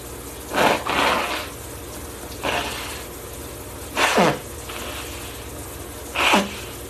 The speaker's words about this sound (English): Sorry, I have to blow my nose.